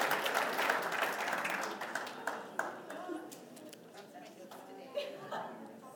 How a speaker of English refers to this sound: We can clap at that. Yeah, because that's for us.